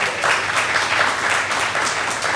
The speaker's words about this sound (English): I wasn't looking for any applause, but thank you guys.